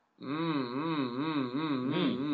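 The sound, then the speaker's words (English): A single voice hums as a vocal warm-up exercise, one sustained, buzzy tone that wavers up and down in gentle, regular pitch swoops, holding steady loudness for about two seconds with no speech. “I would jump straight in with some humming, right?”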